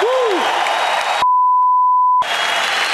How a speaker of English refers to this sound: So please give him a round of applause as our heavyweight champion of the world.